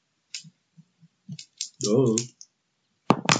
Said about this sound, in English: Wait. Oh shit! I'm rolling the wrong dice here.